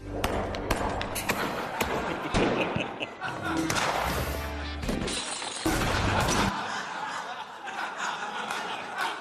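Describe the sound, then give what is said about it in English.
Several sharp gunshot cracks ring out at irregular intervals as a candidate in a right-wing political ad shoots targets, each shot followed by a bright shattering burst as a target breaks, over a busy, dense background with faint voices. “There is an entire species of political ads on the right where the candidate just shoots something they don't like.”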